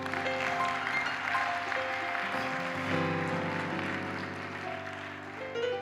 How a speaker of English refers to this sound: They said, what you're doing is changing and saving lives, because Soyapango, where we had our crusade, you can give Jesus a clap.